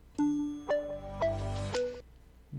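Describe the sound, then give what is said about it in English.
AT&T's short audio logo jingle: four bright, sustained electronic notes rising and falling in quick succession, clear, with no one speaking over it. “This is a phone company.”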